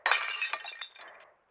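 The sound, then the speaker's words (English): A sharp, loud crash of window glass shattering as someone breaks into a locked ticket office near midnight, followed by a brief scatter of tinkling shards that fades out within about a second; no one speaks. “I could just break the glass.”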